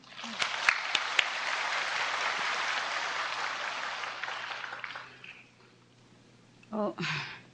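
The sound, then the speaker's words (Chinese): Sustained applause from a sizable crowd, dense and steady, lasts about five seconds as the audience welcomes the master to give a teaching, then fades out, followed by a brief voice near the end. “我们现在以热烈的掌声欢迎师父为我们开示。”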